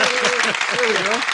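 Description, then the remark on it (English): A canned applause sound effect plays from an applause button: a dense, steady wash of many hands clapping at an even loudness for just over a second, with voices cheering or talking over it. “I don't have the applause button.”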